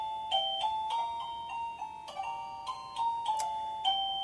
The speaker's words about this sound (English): if somebody is ringing the bell outside, to my understanding too, the bell lights up to let them know that the button has been pressed